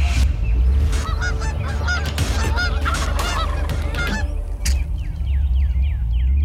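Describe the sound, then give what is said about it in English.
A dense, overlapping chorus of loud goose honks blown on a goose call, rapid and continuous, thinning toward the end into a few clear, rising honks. No one speaks. “We have our good friend, two-time World Live Goose Calling Champion, owner-operator of Molt Gear,”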